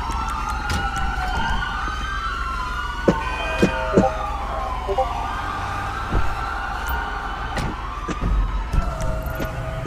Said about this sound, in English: I can tell you one thing though, I did hear a lot of sirens coming.